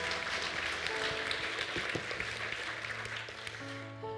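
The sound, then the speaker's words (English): A steady round of applause from a crowd for people standing up front after sharing their stories, many hands clapping in a dense, crackling wash that holds at an even loudness for several seconds with no one speaking. “Yeah, you can give them a round of applause.”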